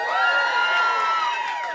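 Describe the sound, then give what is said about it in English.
An audience at a Tiny Desk concert erupts in loud, sustained cheering, many overlapping voices whooping and shouting high-pitched for a couple of seconds, a dense wash of crowd noise with no single voice standing out. “If you're here, make some noise.”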